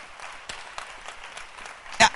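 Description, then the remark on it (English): A church audience claps together in a steady, crackling patter, building to a sharp louder burst of claps right at the end. “Clap your hands”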